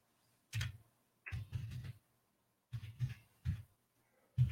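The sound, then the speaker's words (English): Soft clicks and taps of someone typing on a computer keyboard, coming in a few short, irregular bursts separated by brief pauses, with no talking. “I got to take my glasses off to look at my keyboard.”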